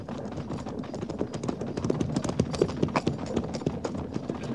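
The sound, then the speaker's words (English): Several horses' hooves clip-clop in a dense, steady, overlapping rhythm, a continuous patter of hoofbeats with no voices over it. “All this riding only to turn back.”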